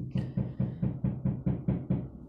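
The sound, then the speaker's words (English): A rapid, steady series of about ten solid knocks on a door, evenly spaced and moderately loud, with no voices. “Why is it the door?”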